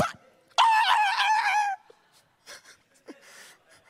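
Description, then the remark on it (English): A voice imitates a dog yelping in pain: one loud, strained, high-pitched cry lasting about a second that wavers and sinks, followed by faint scattered noises and quiet. “That's how our dog sounded in the country when I was being raised”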